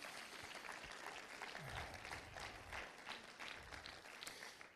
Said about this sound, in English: Somebody that agrees with that, why don't you give him a hand clap of praise right now?